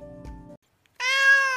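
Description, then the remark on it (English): A cat clawing at curtains lets out a loud, drawn-out meow after a short pause that follows a lower, murmuring vocal sound. No one speaks. “She ran all the way to the humans and jumped up and started clawing the curtains and meowing.”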